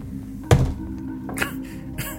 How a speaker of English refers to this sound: Gonk! I like it. Everybody's gonna know you're rolling dice.